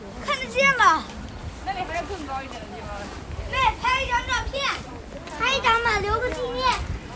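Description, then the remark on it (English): Excited children's voices chatter and squeal in high-pitched bursts, rising and falling in several lively clusters over a steady outdoor rumble; children with their grandmother coming up Jingshan (Prospect Hill), excited at seeing the Forbidden City. “So we're about halfway up the hill here, and you can hear just then there were some children with their grandmother coming up the hill, and they suddenly got very excited by the fact that you can see the Forbidden City so clearly.”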